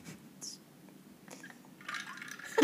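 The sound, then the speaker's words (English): Four Loko trickles and then pours steadily into a glass, the splashing growing louder and brighter toward the end, with a faint rising tone as the glass fills. “You can tell the way it's a glass by the way it sounds.”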